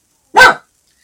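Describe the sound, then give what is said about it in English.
A single loud dog bark, short and sharp, standing alone against silence. “So, you have a friend there, or are you barking?”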